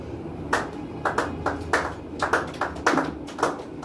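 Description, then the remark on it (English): Scattered hand claps from an audience, a dozen or so sharp, uneven slaps rather than a full round of applause, moderately loud with no one speaking. “You are clapping, but I don't know if you understand it.”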